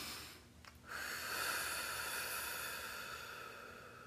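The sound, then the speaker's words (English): One long, slow breath, airy and hissing, swelling after a brief pause and then gradually easing off. Quiet overall, with no talking. “But if you just take a moment and sit back and say, hold on, let me breathe. Because breathing is a part of the process. Let me breathe.”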